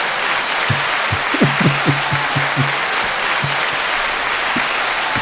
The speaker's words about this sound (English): Bravo. Bravo. I'm jumping in on that clap.